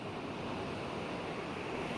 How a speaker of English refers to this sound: I love the sound of the water on a beautiful summer day.